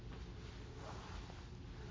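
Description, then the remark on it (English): A page of a Bible is turned, a soft papery rustle and crinkle lasting a couple of seconds with no one speaking. “And now turn, well, it's turning the page in my Bible, but the next verse, listen to this.”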